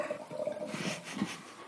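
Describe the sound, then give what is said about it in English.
A short splash of wine poured into a spittoon, a steady gurgling trickle lasting under two seconds, moderately loud, with no voices. “So, and I try to use your spittoon to pour a little bit out.”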